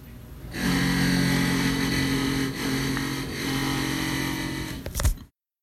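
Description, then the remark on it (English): A power drill whirs steadily and loudly for about five seconds, its motor pitch holding with slight dips, then winds down with a brief clunk before stopping. “Well, let's take a quick break, and then you, me, and the drill can talk a little bit more about that.”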